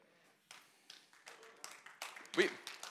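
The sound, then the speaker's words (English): A slow, sparse golf clap from a single lone audience member, about half a dozen soft claps spaced evenly and gradually getting a bit louder. “It started off as a golf clap, but it picked up a little momentum there.”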